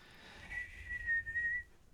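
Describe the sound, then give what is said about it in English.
A breathy, airy attempt at whistling: a thin, wavering high tone sputters in and out for about a second, mostly rushing air with only a faint pitch coming through. “I can't whistle right now.”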